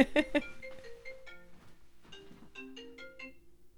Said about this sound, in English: But, oh, sorry about that. My phone's ringing. One second.